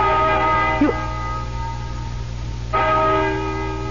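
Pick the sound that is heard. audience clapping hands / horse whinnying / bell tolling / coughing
bell tolling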